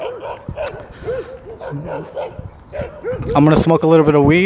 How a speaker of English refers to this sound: There's some guy standing in front of a gate. He's just standing there. It looks weird. And all the dogs are barking at him. Can you hear the dogs going crazy? It's because he's just standing there in front of him.